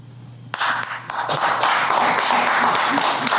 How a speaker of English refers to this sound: You don't gotta clap for that.